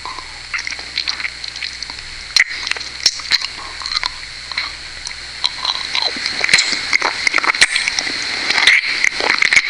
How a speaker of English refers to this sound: You like the sucking noise?